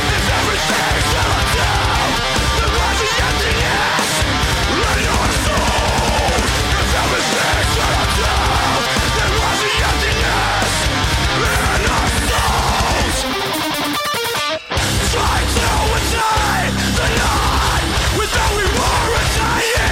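A loud, dense metalcore track plays throughout, with pounding drums, heavy distorted guitars and harsh yelled vocals, cutting out briefly for a sudden pause before the full band crashes back in.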